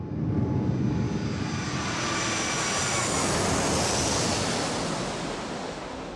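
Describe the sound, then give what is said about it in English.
A steady, loud roar of passenger airplane engines during a go-around, the plane climbing back into the cloud deck to take another run at landing, a broad rushing drone with a faint high whine riding on top, unbroken, with no voices. “we plowed back into the cloud deck in a move that would probably result in paperwork after the flight”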